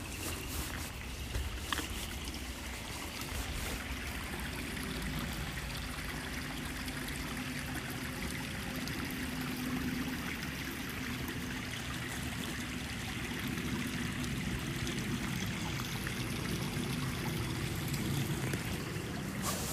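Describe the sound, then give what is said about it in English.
A steady, continuous rush of flowing stream water with a soft trickling texture, holding an even loudness throughout with no voices. “One more stream.”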